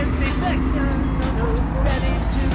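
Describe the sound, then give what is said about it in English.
A steady, loud rumble of heavy road traffic on a road near Thebes, Greece, at nightfall, with trucks droning past in a continuous low roar, while a voice talks faintly over the noise. “There are trucks going by.”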